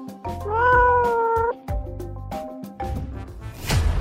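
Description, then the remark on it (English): A cat lets out a long, wailing meow that rises and wavers like a crying baby, followed by a couple of shorter plaintive cries, loud with no talking. “When cats need something from their owner, they can adapt their meow to manipulate humans.”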